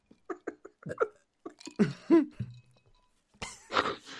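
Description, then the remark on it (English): A belch stretched into a warbling, two-note rise and fall, like a siren's wee-woo, after a handful of short throaty vocal bursts and before a final breathy gust. “Law wee woo burp.”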